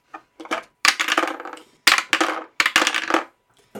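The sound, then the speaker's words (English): Several dice clatter and tumble across a hard surface in quick bursts, a sharp rattle followed by bouncing clicks, repeated a few times with no talking; the rolls come up 9, 19 and 12. “Let's roll some dice.”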